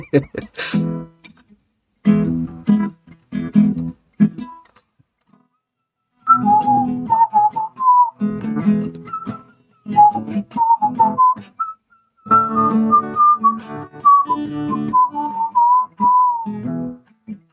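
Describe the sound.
Someone whistles the melody of a pop song in a string of short, bouncy phrases separated by brief pauses. The tones are clear and fairly high. A voice or breathy sounds come first.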